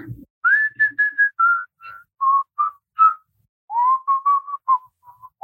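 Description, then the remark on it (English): A person whistles a short, bouncy phone ringtone intro jingle in a run of quick clipped notes with brief pauses, clear, the tune stepping down slightly before a final few notes. “I haven't tried to whistle this jingle in forever, but let's give it a go.”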